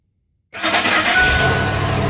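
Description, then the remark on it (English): After a brief silence, a car engine abruptly starts and settles into a loud, steady rumble, with no voices. “You see, Aaron was also creating a car that ran on water.”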